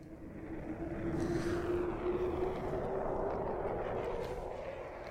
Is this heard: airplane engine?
yes